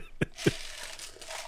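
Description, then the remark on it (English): A small bottle of aspirin pills is shaken: two quick thumps, then a steady, gritty rattle of tablets tumbling inside, with no one speaking. “Those are pills you just heard. Those are a bunch of aspirins.”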